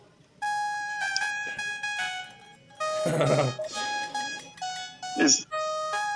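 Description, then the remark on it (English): A voice imitates a toucan call: a run of steady, reedy, high-pitched tones in several long bursts with brief breaks, fairly loud, ending with a short rising squawk. “He had a toucan.”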